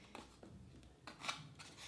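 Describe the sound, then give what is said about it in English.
A small knife slices into a package box in several short, scratchy strokes, with faint crinkling between cuts and no voices. “Okay, let's try and cut it on random places.”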